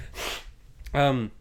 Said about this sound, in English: Excuse me, I'm sniffing into the microphone.